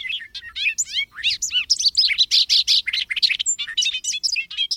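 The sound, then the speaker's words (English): Bright, rapid bird chirps and whistled calls tumble over one another continuously, fairly loud, forming a busy stretch of birdsong with no voices. “Migratory birds, on the other hand, have other ways of finding their way, as BirdNote's Michael Stein reports.”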